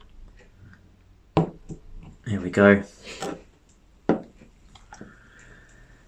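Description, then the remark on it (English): Beer is poured into a glass: a couple of sharp clinks and a brief spoken phrase, then a steady, soft stream of liquid with a faint fizzing hiss toward the end. “Right, let's pour. Oh, it's fizzy. Bubbly.”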